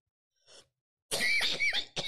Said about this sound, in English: Ow. That hurt. I'm coughing like a motherfucker.